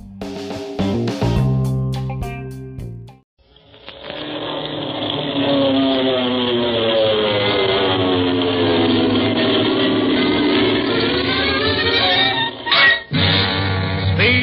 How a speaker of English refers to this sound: From out of the past comes a thundering roar of the twin Wasp 14-cylinder radial engines.